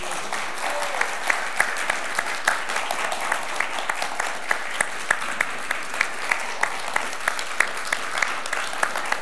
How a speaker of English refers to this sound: I always feel weird when everybody's clapping and I'm not. I feel when everybody's clapping and I'm not clapping. I feel like I should be clapping.